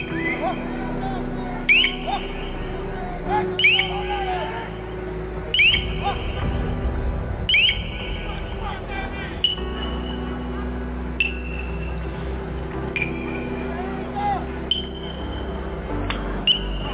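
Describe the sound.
A piercing, high-pitched crowd control acoustic device tone, used on protesters, repeats in short rising bursts about every two seconds, sounding over a steady low rumble of crowd noise and indistinct voices.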